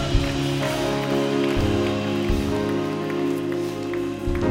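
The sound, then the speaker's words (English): An audience claps continuously in praise of the Lord, a dense, crackling wash of many hands, steady in loudness throughout, with sustained low musical tones holding underneath. “Come on, give the Lord a hand clap and praise.”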